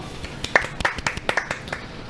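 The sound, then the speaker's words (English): A handful of sharp, scattered claps at an uneven pace, moderately loud, like a small, half-hearted round of applause with no one talking. “Also, please clap. Please clap.”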